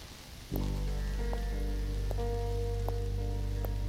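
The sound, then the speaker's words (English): Steady rain hisses over a city street, joined after a moment by a loud, sustained low humming drone with faint rhythmic ticks; no one speaks. “I like walking alone at night, especially in the rain.”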